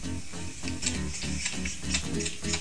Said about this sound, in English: And notice how the purr is so loud.